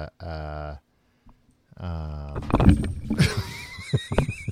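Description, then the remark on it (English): A dog knocks things over, jumping into a microphone stand and pulling a recorder off a table: a burst of clattering, with sharp knocks and rattles tumbling for about two seconds, following two drawn-out, whining tones. “This dog just knocked over everything.”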